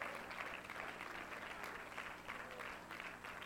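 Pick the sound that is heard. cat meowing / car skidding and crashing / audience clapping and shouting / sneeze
audience clapping and shouting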